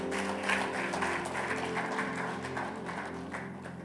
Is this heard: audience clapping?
yes